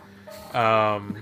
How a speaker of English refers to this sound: You use Audacity to edit too. Yes. And, you know, there's that generate feature where you can do the tone where, you know, if we swear, I can throw in a beep over the word.